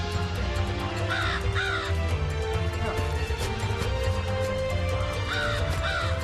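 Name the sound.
crow cawing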